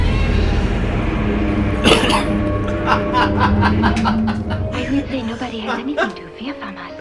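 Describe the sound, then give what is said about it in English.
A loud cough bursts out, followed by a rapid string of breathy, snickering chuckles over a low background rumble. “Yeah, that is the way we want to start episode 55, is with a cough.”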